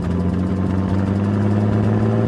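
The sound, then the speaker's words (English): A heavy truck engine roars loudly and steadily, a deep, constant rumble with strong low droning tones and no voices. “now, show us how loud a roaring truck is”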